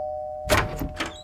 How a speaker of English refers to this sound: Here's the fire hydrant, and oh, there's the yellow house. Time to put on the charm offensive. Just have to ring the doorbell and...